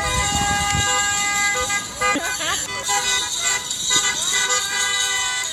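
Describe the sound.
Several car horns honk and blare over one another in sustained, overlapping tones, with voices cheering and calling out throughout amid steady traffic noise.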